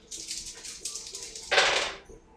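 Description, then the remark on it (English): Four dice are rolled for a difficulty-four check: they rattle together in a quick clicking shake, then clatter loudly across a hard surface for a moment before settling into quiet, with no talking. “Alright, I got four dice.”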